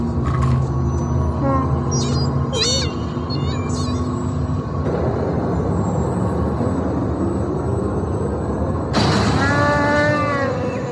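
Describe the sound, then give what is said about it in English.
Chewie's loud, wavering howl rises late in a film scene, after a run of chirpy electronic beeps and warbles over a steady mechanical rumble. “I would have bet cash money that in addition to Chewie's howl, that there was an R2 thing there as well.”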